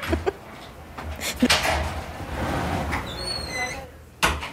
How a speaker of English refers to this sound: I feel like I have to shut my door. Sorry, 1 second. I'm shutting my front door.